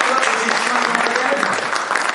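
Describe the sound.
A crowd claps in a dense, steady round of applause, loud and continuous throughout, with faint voices mixed into the clapping. The applause is for someone's birthday.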